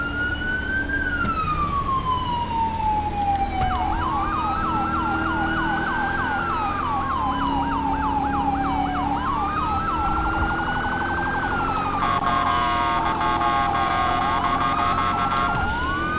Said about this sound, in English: Really gotta change that siren. Why? I swear it only happens when I'm driving.